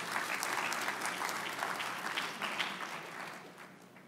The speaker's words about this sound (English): Let's clap. Thank you.